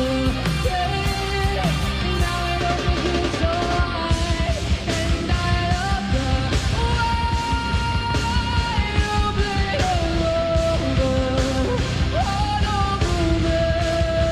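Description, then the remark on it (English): A loud, dense rock song plays throughout, with heavy distorted instruments and pounding drums under a strained, yelling lead vocal that stretches into long held notes. “Sometimes you just want to go in a studio and yell and scream, you know what I mean?”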